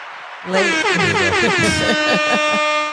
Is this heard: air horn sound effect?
yes